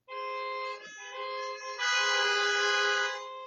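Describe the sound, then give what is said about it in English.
Several car horns honk together at Stony Creek United Methodist Church, in answer to a call for light flashes or car horns, in sustained, overlapping blasts, swelling louder partway through before easing off, with no one talking. “If you can hear me, can I get some light flashes or car horns?”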